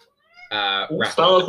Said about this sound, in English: my cat, good grief.